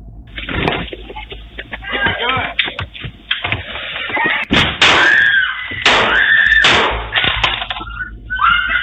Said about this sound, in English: So to protect his family, Mitchell aims the gun at James through the glass and quickly fires off three shots. Here is that audio.